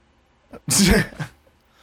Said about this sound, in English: he's so mad that he's coughing.